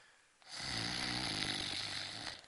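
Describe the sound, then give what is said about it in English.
A person imitates a loud snore with their voice, one long rasping, rattling inhale lasting about two seconds, after a brief quiet start. “So he's there in the front of the boat, and he's tired, and he's fast asleep, and he's snoring.”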